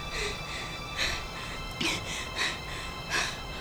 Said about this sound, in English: Just slow that breathing down. In, out, okay? You're safe.